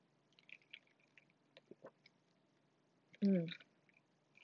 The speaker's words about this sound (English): Let me take a sip of my El Cafe.